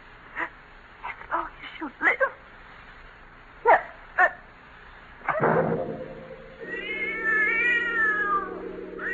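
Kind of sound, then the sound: animal, cat yowling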